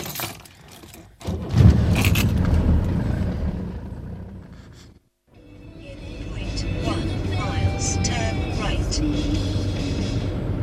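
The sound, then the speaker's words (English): Steady low road rumble from inside a moving car driving into Dunstable from the Luton direction, with a lot of oncoming traffic, engine drone, occasional rattles and jangling, a brief hush midway, and muffled talking at times. “There's a fair amount of traffic. There's actually a lot of traffic coming the other way.”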